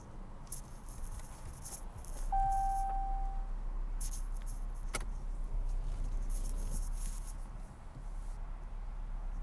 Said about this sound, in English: I'm in an awkward position right now driving. I'm like taking up two lanes. There we go, baby.